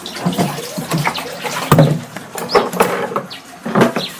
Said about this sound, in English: Here is the sound of water being poured into containers